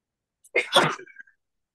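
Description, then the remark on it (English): A single sharp, fairly loud sneeze: a quick intake followed by an abrupt explosive burst that trails off in under a second, with no talking around it. “Bless you.”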